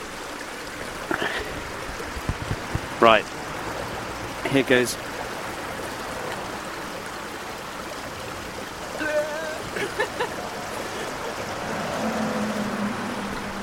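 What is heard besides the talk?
stream water trickling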